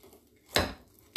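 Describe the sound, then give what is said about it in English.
A knife cuts through a raspberry trifle cruffin from 10-4 Bakery in Sturchley on a plate, making two loud, crunchy scraping bursts: a longer one, then a shorter one after a brief pause. No one speaks. “So I'm going to put the phone down, what I'm recording on, and I'm going to cut this cruffin.”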